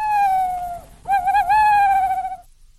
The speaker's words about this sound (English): Hey, is it an owl? It is an owl.